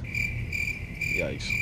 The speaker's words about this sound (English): Crickets. Shit. Definitely crickets.